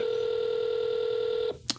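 A steady, buzzing telephone tone holds for about a second and a half, then cuts off abruptly, followed by a single sharp click as the call is hung up. No one speaks.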